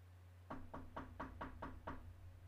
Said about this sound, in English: Here's this bedroom door. Should we knock?